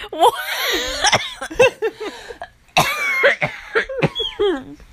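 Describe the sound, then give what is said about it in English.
A burst of coughing mixed with laughter, with several sharp coughs and giggly breaths, two clusters of bursts separated by a brief pause. “A liar would cough.”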